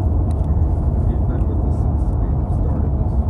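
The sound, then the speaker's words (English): A heavy truck rumbles steadily, its deep, constant engine drone filling the low end for several seconds, with indistinct voices mixed in. “Yeah, that truck is a geek.”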